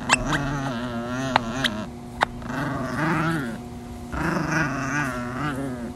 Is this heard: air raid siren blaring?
no